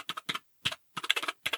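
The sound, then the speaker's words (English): Quick bursts of typing on a System 76 mechanical keyboard with slightly quieter Royal keycaps, plugged in over USB-C to a studio computer; clear, short clustered clacks separated by brief pauses, no voices present. “I have it plugged in over USB-C to my studio computer. It is now my studio keyboard.”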